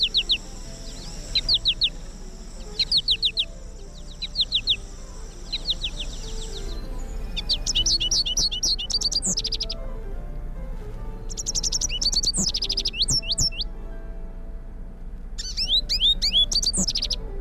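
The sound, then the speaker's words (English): An American goldfinch song: a bright, rambling warble of quick twittering notes and sweet trills, delivered in bursts with short pauses, clear over a soft background hum with no voices. “The American goldfinch is a favorite of many for its beautiful colors, its bounding flight pattern, and the sweetness of its song, like this.”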